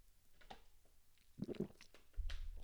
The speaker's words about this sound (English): I'm going to take a sip of my tea here real quick.